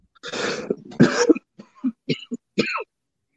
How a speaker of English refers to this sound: Man, it feels good to cough again in public and not be criticized.